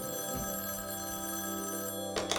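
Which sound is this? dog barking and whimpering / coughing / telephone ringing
telephone ringing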